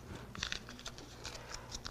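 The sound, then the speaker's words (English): Crinkling and rustling of a paper dollar bill being folded and creased, a string of soft crisp crackles over about two seconds with no voices. “If I fold it, it still has value.”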